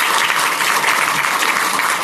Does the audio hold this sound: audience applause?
yes